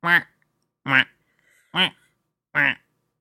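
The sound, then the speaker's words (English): A person imitates a duck with four slow, evenly spaced nasal quacks, each short and loud, separated by brief pauses of near silence. “That duck was just saying hello to a French person.”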